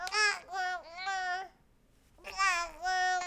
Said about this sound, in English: Well, now I have my own baby. He's babbling up a storm, and I have questions.